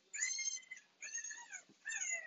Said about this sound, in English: Them damn puppies won't go to bed.